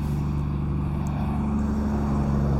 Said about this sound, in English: I spotted some men driving their trucks along the levee next to me. They looked official. Live action levee building.